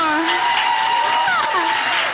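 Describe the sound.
An audience applauds in a steady, dense wash of clapping that holds at an even level for about two seconds, with scattered voices and a few cheers mixed in.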